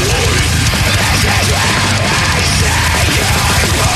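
Loud, dense heavy metal fills the whole stretch, with harsh screamed vocals over pounding drums and thick distorted guitars that never let up.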